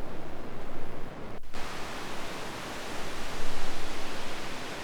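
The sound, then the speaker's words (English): Steady, loud radio static from a 272E synthesizer module as its frequency is changed, fed into a 297 infinite phase shifter, hisses across the whole clip, broken once by a brief dropout as the tuning shifts, then resuming as a dense, even rush of noise with no voices. “So that's static. It's not quite flat or plus 3 dB or minus 3 dB, you know, pink, white, or brown noise or whatever.”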